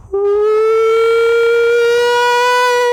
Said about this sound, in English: You hear the siren just there.